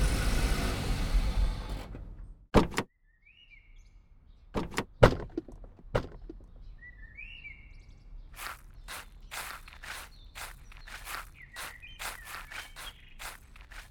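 A rumbling hum cuts off, then several loud car-door thunks and clicks sound as someone gets out of the car on arriving at a house, followed by a steady run of footsteps with faint bird chirps in the background.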